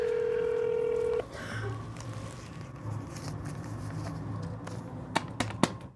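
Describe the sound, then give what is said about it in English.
A steady telephone tone rings out for about a second as someone calls a man's phone, then cuts off into low background hiss, followed near the end by a few quick, sharp dialing beeps. “Are you calling him too?”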